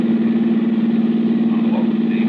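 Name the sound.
car engine running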